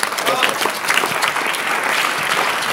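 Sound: audience clapping and applauding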